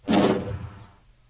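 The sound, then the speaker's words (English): A desk drawer slides shut with a single solid thump, followed by a roomy reverberant tail that fades out over about a second. No voices are present. “It's the sound of a decked drawer closing. With a little reverb.”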